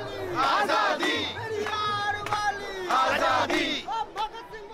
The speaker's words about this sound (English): That's why there's a defiant slogan in the air, "We will not show our papers, hum kagaz nahi dikhayenge."